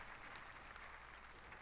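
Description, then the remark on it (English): A steady wash of crowd applause, many hands clapping together in a dense, even patter that holds at a fairly soft level throughout, with no voices rising above it. “Round of applause for all the Virgos.”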